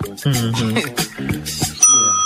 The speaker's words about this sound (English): I wish I had a sound effect. Ding. I need a bell. I think we have a bell.